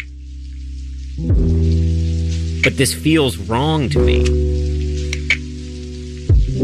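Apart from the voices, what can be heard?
rain falling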